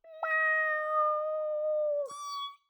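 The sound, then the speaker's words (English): A child imitates a cat with one long, drawn-out meow, loud, holding a steady tone before its pitch breaks upward near the end. “Okay, I think we've all had enough meows now.”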